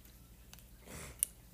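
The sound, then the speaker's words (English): A quick, airy slurp of watery strawberry applesauce from a container, fairly soft, ending in a small wet click, with no talking around it. “I just, like, slurped some.”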